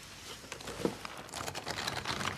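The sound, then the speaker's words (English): Dry paper from an old book crinkles and rustles as a stiff page is flexed, with a steady, fine crackle of small snaps running throughout, no voices. “Even the paper sounds kosher.”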